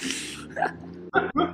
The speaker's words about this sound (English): I have the hiccups.